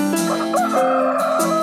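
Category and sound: bird, rooster crowing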